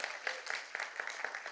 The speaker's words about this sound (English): And we've got a couple of kids here. Come on, give her a clap for that.